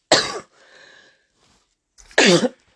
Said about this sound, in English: Excuse me. And I don't know why he making me do that cough. And he didn't want me to stop it.